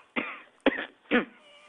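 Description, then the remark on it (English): Three harsh coughs in quick succession, roughly half a second apart, heard over a radio phone-in telephone line, sounding thin and band-limited, with faint line hiss in between. “I can hear you coughing.”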